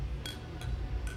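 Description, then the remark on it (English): Three bright glass clinks ring out in quick succession, like glasses touched together in a toast, each with a brief shimmering tone over a low background rumble. “That was Foley worthy clanking.”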